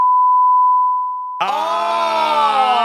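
A steady, single-pitched censor bleep, used to beep out a name, holds for over a second and tapers off, then a loud, drawn-out groaning voice abruptly cuts in and carries to the end.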